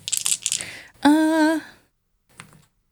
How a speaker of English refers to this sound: And I'll roll my dice here.